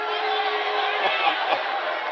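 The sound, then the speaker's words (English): A large crowd boos Rubio in a steady, unbroken roar of many voices, loud and continuous for a couple of seconds, with a few louder shouts rising briefly above the din, after he says his colleagues do not support banning every semi-automatic rifle sold in America. “I mean, they're booing Rubio for saying that.”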